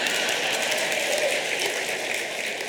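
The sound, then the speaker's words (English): An audience applauds in a steady, dense wash of clapping that holds at an even loudness for a few seconds, with no voices over it. “I knew who would applaud.”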